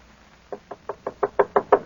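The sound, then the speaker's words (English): A steady series of eight knocks on a door, evenly spaced and growing slightly louder, with no talking. “open the door.”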